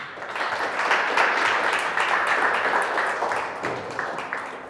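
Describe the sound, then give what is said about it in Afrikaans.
An audience applauds the Lord after a prayer, a dense wash of many hands clapping at an even, sustained level for several seconds before easing slightly toward the end, with no talk over it. “Kan ons die Here 'n lekker ander klap gee?”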